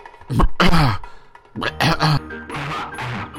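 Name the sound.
throat clearing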